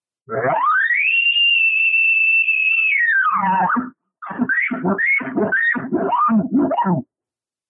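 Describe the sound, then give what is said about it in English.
A bugle blown on a non-latex diaphragm call: a long, high whistling note that climbs, holds steady for about two seconds and drops, followed by a quick run of raspy, grunting chuckles. “And then I'm going to bugle on it.”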